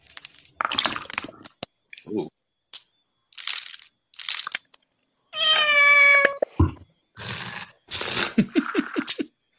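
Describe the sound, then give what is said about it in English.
A single long, drawn-out cat meow rings out clearly, surrounded by short bursts of crunchy, crinkling noise like food being chewed or handled. “Man, you gotta have a really chill cat for that.”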